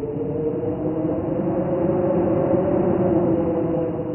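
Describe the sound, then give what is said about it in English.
Gusts of wind recorded outdoors during a winter snowshoe walk: a steady, rushing wind roar holds at an even loudness throughout, with a low droning hum running beneath it and no clear rise or fall of separate gusts. “Gusts of wind.”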